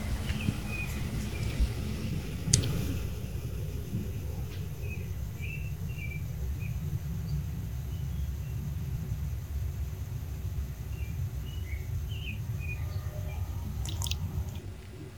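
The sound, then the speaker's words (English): Faint American robin song: a few short warbled phrases that come and go, set against a steady low rumble of background noise with no talking. “But American Robin is the only thing I picked up in there.”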